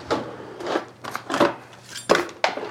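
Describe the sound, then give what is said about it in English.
A sharp knife cuts through a head of cauliflower, breaking it down into bite-sized florets, in about six crisp, crunchy strokes at an uneven pace, each a short crackling burst with no one speaking. “So I'm breaking down this head of cauliflower right now.”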